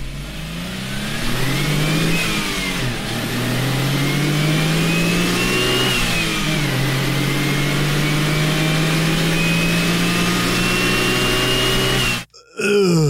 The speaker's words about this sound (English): AutoZam AZ1 was powered by a Suzuki-built 657cc dual overhead cam turbo triple, that's a three-cylinder baby, that is unironically one of the best-sounding engines you've never heard.